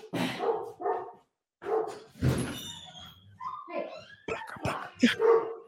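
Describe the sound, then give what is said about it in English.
A female dog barks in several sharp bursts, mixed with higher whining yips between them, over about six seconds with brief pauses and some voices. “She doesn't usually bark unless there's like something to bark at.”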